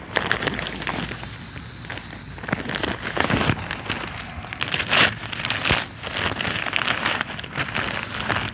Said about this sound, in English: I got some paper, so I'm putting paper down to get this booze off my fucking tarp.